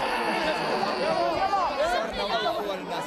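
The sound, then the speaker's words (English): A dense, agitated crowd of besieged people in Yarmouk, held back by armed men, fills the air with overlapping shouts and cries, voices rising and falling in wavering pitch over a constant roar of babble, loud and unbroken throughout. “Armed men struggled to contain the crowds, but they couldn't hold back the emotion.”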